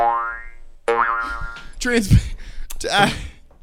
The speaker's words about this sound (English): Put a cartoon sound effect here.